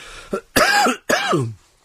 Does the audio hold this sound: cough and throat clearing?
yes